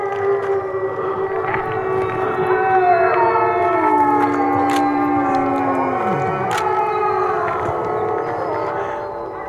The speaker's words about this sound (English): And they said they had no idea if the wolves would howl back, but we should try it. It sounds kind of silly. But then listen to what happened. And now all the wolves are howling in response.